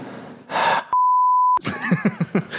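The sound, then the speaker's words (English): A single flat, steady censor bleep lasting under a second cuts in abruptly over a swear word, preceded by a breathy exhale and followed by a person resuming speaking. “Yep, I gotta beep that now. Bleep that out now.”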